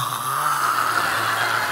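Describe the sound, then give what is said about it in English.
A voice imitates the snoring of family members sleeping in a car during an overnight drive to the south of France, a steady rasping drone held for nearly two seconds at an even loudness, with a low buzzing hum beneath a brighter, breathy rattle. “I drive overnight and the rest of the family sleep in the car.”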